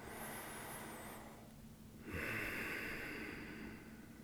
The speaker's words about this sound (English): Let's start by just taking a couple of breaths. Breathing in, breathing out. No particular way, no special technique. Often those get in the way. It's just recognizing that we're breathing.